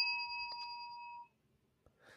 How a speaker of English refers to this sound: Right. I hit the bell.